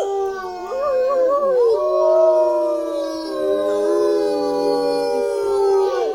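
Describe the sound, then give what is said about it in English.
A pack of wolf-dog hybrids at an animal sanctuary in Skagit County howl together in a sustained, overlapping chorus, their long wavering tones rising and falling for several seconds with no talking. “But it's most known for a pack of wolf-dog hybrids, which are well documented on the organization's TikTok account.”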